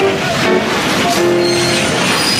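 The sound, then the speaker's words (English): A train hits a car at a railroad crossing: a loud, continuous roar of rail noise with thin, high metallic squeals threaded through it, lasting a couple of seconds with no voices. “We all witnessed and heard the train hit his car and ran over him.”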